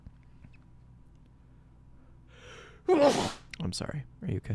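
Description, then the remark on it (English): A single loud sneeze: a brief breathy inhale, then a sharp explosive burst, followed right away by people talking. “Bless you.”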